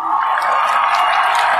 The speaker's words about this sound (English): And the winner is, let's see, we need some clapping here for this.